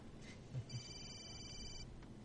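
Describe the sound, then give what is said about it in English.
A telephone rings once in a steady, high-pitched electronic burst lasting about a second, fairly faint against a low rumbling background, with no one speaking. “A phone ringing.”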